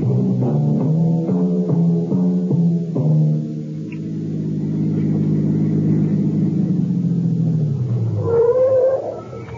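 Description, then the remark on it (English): A car drives near a border with a steady, droning engine hum, pulsing unevenly at first, then smoothing out before a high, squealing whine rises near the end. “No, turn the car around. We're going back.”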